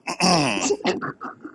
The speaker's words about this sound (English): I mean, that's not me judging you. I'm just clearing my throat just because I had, you know, a little throat irritation.